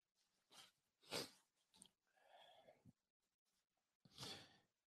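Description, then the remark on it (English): Someone blows their nose into a towel several times: a few short, breathy snorts, then a longer honking blow, and a final loud blast into the towel. There is no talking. “I can't believe I just grabbed Scott towel to blow my nose, but I can't find anything else.”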